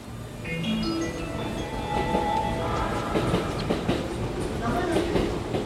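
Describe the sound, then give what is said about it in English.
An electric commuter train rolls along the rails, a steady rumble with clattering wheel beats and a high motor whine that rises and shifts, continuous throughout with faint murmuring voices underneath. “in Tokyo, people spend a lot of time riding around on electric trains.”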